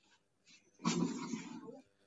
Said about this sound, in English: No, my daughter hit a bucket or something.